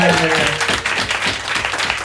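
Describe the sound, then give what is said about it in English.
An audience applauds in a steady, dense round of clapping that holds at an even loudness for about two seconds, with a brief trace of a voice at the very start. “Give David and Matt Page a round of applause for doing this.”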